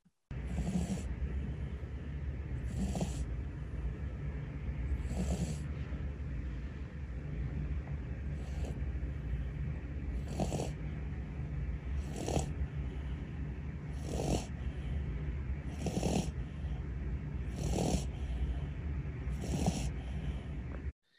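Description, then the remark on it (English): A dog snores steadily, with rhythmic snorting breaths roughly every two and a half seconds over a constant low rumble, fairly loud, with no talking. “Austin snores like an old man, and I caught it on video”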